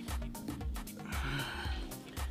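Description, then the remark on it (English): A dog sniffs, a run of quick, snuffling nasal bursts repeating in an uneven rhythm, fairly loud, with no talking. “If you go and sit there and sniff, you might as well come here.”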